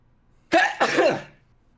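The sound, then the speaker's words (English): A single loud sneeze bursts out sharply with a brief intake and explosive release, then trails off over about a second; no talking is heard around it. “Bless you.”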